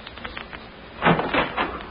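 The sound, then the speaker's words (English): A door on board a craft is opened, a short rattling, scraping burst lasting about a second after a quiet start, then fading back to a low background hum. No one speaks. “Listen to the door. I'll open it and you step in”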